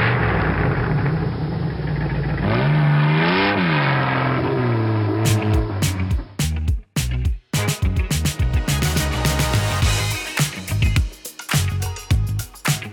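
A loud car engine drones steadily, then revs up and down with sweeping pitch before breaking into choppy, sputtering bursts. No one speaks.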